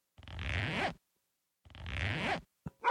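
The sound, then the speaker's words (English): Two rasping record scratches, each under a second long and separated by a short pause, sound loud with no voices, followed by a brief scrape at the end. “Oh, that's a record scratch.”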